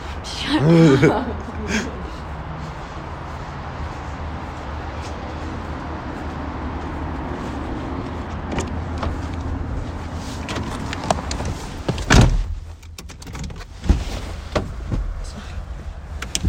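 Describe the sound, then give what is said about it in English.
A car engine rumbles steadily at low pitch while the car is moved closer, with a brief voice near the start and a solid door thud near the end. “I'm just gonna move the car closer.”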